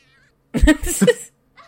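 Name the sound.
cat yowling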